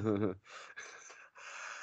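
A short voiced, wavering sound gives way to three harsh, breathy coughing bursts in a row, each about half a second long, fairly loud and raspy with no speech over them.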